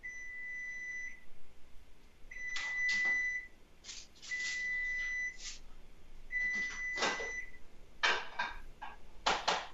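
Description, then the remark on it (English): Electronic beeps from a kitchen appliance timer sound in a repeating pattern, steady tones alternating with bursts of clattering and rustling, moderate in level, with no one speaking. “I got to take this thing out. It's going to beep here in a minute.”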